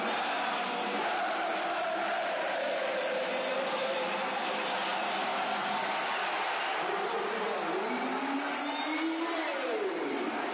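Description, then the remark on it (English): A football crowd roars after Millwall score to go 1-0 up against Derby, a goal credited to Lee Gregory: a dense, unbroken wall of cheering that never lets up, with voices swelling into rising and falling chant-like calls near the end. “You can hear what this crowd is doing.”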